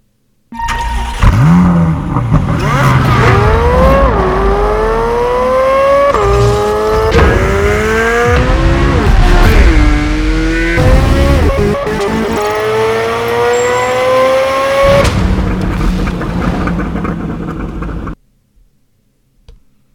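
A loud Chevrolet Corvette Z06 sports car engine, the official car's sound as posted by Chevy, roars and accelerates hard, its pitch climbing and dropping through several upshifts over about eighteen seconds, then cutting off abruptly. No one speaks.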